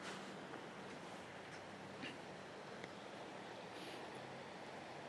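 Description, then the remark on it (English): Water washes and laps steadily against a shoreline, a continuous splashing hiss with faint soft splashes and a low background rumble, no voices. “I'm back in front of the water, where fish jump occasionally, infrequently.”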